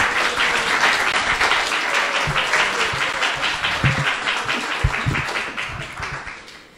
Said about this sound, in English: So let's give a big round of applause to both of them.